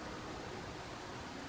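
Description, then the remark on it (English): A steady, even hiss of wind and rain blowing outside against windows, with no distinct rattles or breaks, a soft continuous rushing wash that fills the whole moment without any voices. “It is really blowing the wind outside now, and it is starting to rain. You can hear it rattling off the windows, because the windows do rattle.”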